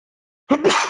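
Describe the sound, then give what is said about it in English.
After a moment of silence, a single loud sneeze bursts out, a brief voiced catch followed by a sharp, breathy blast that trails off quickly. “Bless you. I'm trying to mute button in time.”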